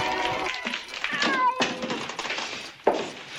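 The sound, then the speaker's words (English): A big, fluffy Persian cat named Claude meows several times while being petted upstairs in a room: drawn-out wavering cries that rise and fall in pitch, fairly loud, with a brief sharp knock near the end. “She's upstairs in a room with a cat, Claude. He's a big, fluffy Persian cat, and she's petting Claude.”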